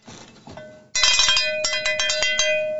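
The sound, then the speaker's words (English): A bright metallic bell rings repeatedly in quick, uneven strikes, its sustained tone ringing steadily beneath a burst of clanging, preceded by a softer rustling lead-in. “Where's the bell?”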